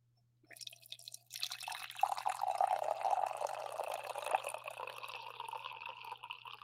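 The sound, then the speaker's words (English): Coffee pours steadily into a cup, a faint trickle at first that swells into a continuous liquid stream with a rising gurgle as the cup fills, no one speaking. “That's the last coffee pour of the day, I think.”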